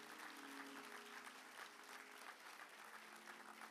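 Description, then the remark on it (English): An audience at a church claps steadily throughout, a dense, sustained wash of applause at a fairly even level from start to finish. “Will you give them a big hand clap?”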